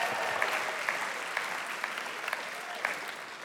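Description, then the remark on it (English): Steady applause from an audience giving themselves a round of applause, many hands clapping in a dense, continuous patter with a few sharper claps standing out, sustained at an even level throughout. “Come on, give yourself a round of applause.”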